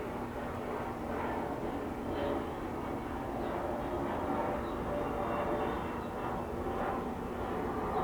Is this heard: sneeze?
no